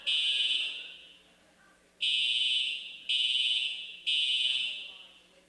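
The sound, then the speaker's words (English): A shrill electronic alarm, a false alarm, blares in four long, loud bursts: one tone, a short pause, then three more in quick succession, each sharply starting and slowly fading. “So, it's a false alarm as far as that goes.”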